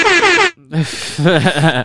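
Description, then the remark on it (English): A loud, brassy air horn sound effect blares for about half a second, then cuts off abruptly, and a person starts talking right after. “Air horn for a carousel of cocks.”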